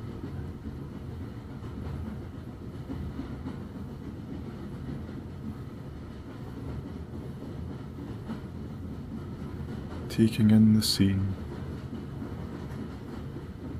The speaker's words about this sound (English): you admire the little plumes of steam escaping from various little pipes, valves, and taps as the behemoth train sits faithfully at the platform's side.